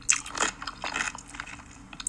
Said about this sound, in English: Imagine closing your eyes and just hearing, and you hear their fucking breathing in between bites and shit.